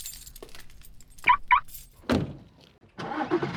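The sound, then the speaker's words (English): Two quick chirps and a solid thunk like a car door closing, then the V8 engine of a 2018 Dodge Charger cranks and catches with a loud, throaty rumble at the end, in a parking lot. “throaty V8 goodness of my 2018 Dodge Charger for everyone. I'm going to go quick jump into my vehicle.”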